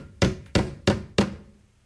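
Four sharp, evenly spaced hammer blows ring out, each with a bright impact and a short decaying ring, with no voices present.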